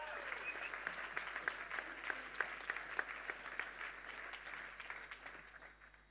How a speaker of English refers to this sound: You've got to cheer.